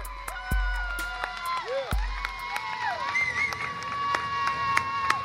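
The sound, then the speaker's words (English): A crowd gathered in a parking lot outside the Carol S. Vance Unit, a state prison near Houston, on a sunny Tuesday morning in August 2019, murmurs and cheers, with many overlapping voices, scattered whoops and shouts, and a few sharp thumps rising above the steady hubbub. “The sun's out, and a crowd is gathered in a parking lot outside the Carol S. Vance Unit, a state prison near Houston.”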